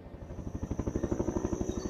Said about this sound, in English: Here comes the chopper with letters from home. Yeah, for sure. We were low on meds till they came.